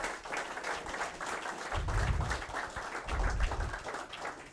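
A crowd applauds steadily for several seconds, a dense patter of many hands clapping with low thumping swells around two and three and a half seconds.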